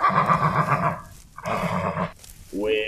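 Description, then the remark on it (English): A horse whinnies loudly, three quavering neighs in quick succession separated by brief pauses, the last one rising sharply in pitch. “A man and his horse trying to get some of my bounty.”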